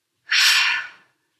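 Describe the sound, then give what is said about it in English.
A single deep, airy breath drawn in through the nose during a guided breathing exercise, fairly loud, starting abruptly and tapering off after under a second, with no talking. “Two more times, breathing in deeply through the nose and breathing out with a sigh.”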